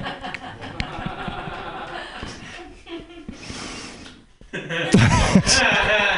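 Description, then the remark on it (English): Scattered audience clapping with crowd murmur at a stand-up comedy show, after the comedian asks those with OCD to clap 17 times: a brief patch of claps early on, then a louder, uneven burst of many hands clapping toward the end, mixed with laughter and voices. “Anyone else got OCD by applause if you're obsessive compulsive? Clap 17 times.”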